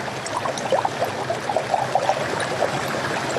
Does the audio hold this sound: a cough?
no